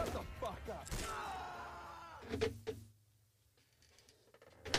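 A chair creaks in a long, groaning, pitched sweep for about two seconds, followed by a few soft knocks and then near silence with faint rustling.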